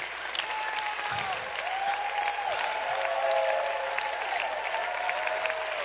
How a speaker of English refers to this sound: Give him a hand, would you?